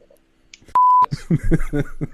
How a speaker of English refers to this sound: but what I'll do is before I upload it, for the first like 5 minutes of the video, I'll like randomly insert beeps. Just like in random places,